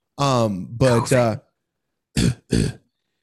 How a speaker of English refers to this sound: Forgive all the coughing. It's a side effect of this mucus nonsense.